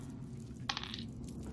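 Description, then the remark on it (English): Dice, rolled for a strength roll in a game, rattle and clatter across a hard surface in a quick burst of sharp, bright clicks lasting under half a second, over a low, steady background hum. No one speaks. “Okay, do me a favor and give me a strength roll.”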